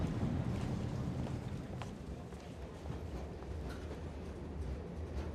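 A steady low rumble of a train interior fills the scene as people board the train, with faint clattering and shuffling movement, continuous and moderately loud throughout, no voices standing out.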